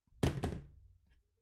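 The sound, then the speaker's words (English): A phone drops onto a desk with a loud thump, bounces once with a second hit, then settles with a low fading rattle and a faint tick. “Okay, I obviously hadn't read this, and if you heard a loud thump, that'd be my phone bouncing off my desk.”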